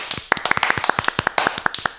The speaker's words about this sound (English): it's one hand clapping my thigh. I hold the mic up to my thigh and then I clap like this